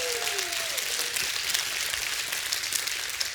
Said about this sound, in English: Give God another hand clap and a shout of praise.